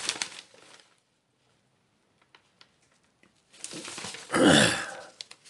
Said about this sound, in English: Excuse me, man. Morning, fuck. Clear my throat.